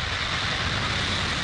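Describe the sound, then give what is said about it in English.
A SpaceX Falcon 9 rocket carrying Starlink satellites lifting off from Cape Canaveral Space Force Station in the afternoon, with a steady, dense roar that fills the whole clip, a continuous rushing rumble with crackling texture and no pauses, and no voices. “3, 2, 1, 0. Ignition. And liftoff.”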